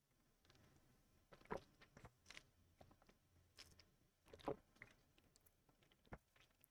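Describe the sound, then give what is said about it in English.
Someone drinking water: two soft gulping swallows about three seconds apart, among faint wet mouth clicks and light tapping, with no talking. “Let me get some water in here.”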